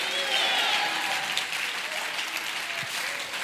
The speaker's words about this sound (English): Come on, if you believe it, clap your hands and shout hallelujah.